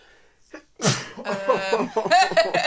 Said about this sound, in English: All day I've not sneezed. As soon as I fucking start the podcast, I sneeze.